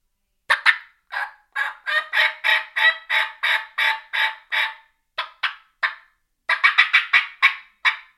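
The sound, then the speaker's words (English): A diaphragm mouth call imitating a turkey, used to locate birds in timber: a long run of raspy yelps in steady rhythm, broken by two short pauses into three bursts of about twenty notes, with no talking. “And so I may start out on a mouth call.”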